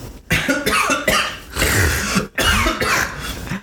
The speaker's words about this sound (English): Excuse me, real cough